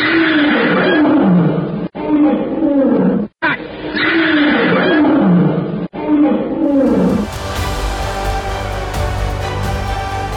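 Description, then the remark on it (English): A lion, Numa, roars loudly in several deep, rasping bursts separated by brief pauses as it charges to attack in a radio drama, before a swelling burst of music takes over for the last few seconds. “At the low sound, Magra turns to look directly into the glaring yellow eyes of the lion. With a deafening roar, Numa hurls himself to the attack.”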